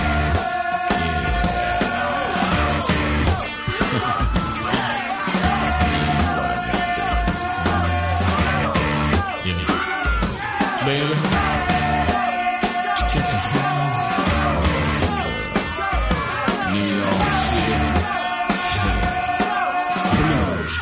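Loud, driving blues rock plays throughout, with distorted guitars, pounding drums and shouted vocals over a steady, energetic beat.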